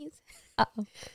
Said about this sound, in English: Bless you. Bless you.